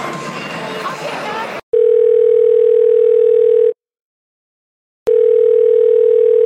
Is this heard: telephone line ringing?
yes